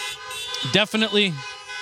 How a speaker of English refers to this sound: Yeah, you can honk for that.